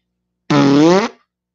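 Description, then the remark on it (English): A single loud fart lasting about half a second, with a steady buzzing, tonal quality that cuts off abruptly, heard on its own without any talking; a woman dozing off in someone's arms farts. “She farted and I'm holding her in my arms.”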